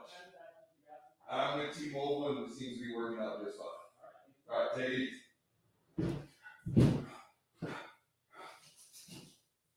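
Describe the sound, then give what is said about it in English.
A front door is pushed shut on a door-to-door Google Fiber salesperson with a single solid thud, coming shortly after muffled voices talking, followed by a few softer knocks and rustles. “And at this stage of the game, you want to know why it is I answer the door? Because I take a little perverse pleasure in closing it.”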